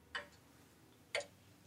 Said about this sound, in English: When I first started, I was listening to the grandfather clock.